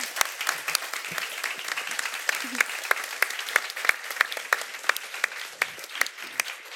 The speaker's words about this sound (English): So thank you so much to your for your contributions, to absolutely everybody, audience and panel. I'd like just a big round of applause for them and yourselves again. Thank you.